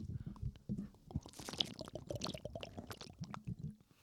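Wet gulping and swallowing sounds as someone takes a long swig of liquor, a series of irregular glugs with soft liquid sloshing, fairly quiet and with no talking.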